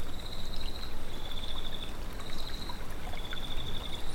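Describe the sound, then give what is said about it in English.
Water ripples and trickles steadily along a stream, a continuous wash of sound with a thin, high insect-like trill running faintly above it. No one speaks. “Let's take a moment now to just listen to the water as it ripples by.”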